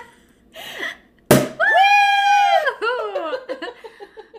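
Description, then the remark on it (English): A champagne cork pops once, sharp, followed right away by loud, excited, high-pitched whooping and squealing voices that stretch out and then break into laughter. “It's like 12 ounces of champagne.”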